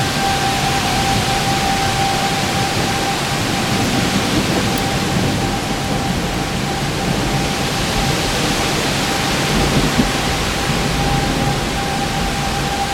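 Heavy rain pours steadily while strong storm wind roars over it in a dense, continuous wash of noise, with no pauses for the full length; thunder is barely audible beneath the wind.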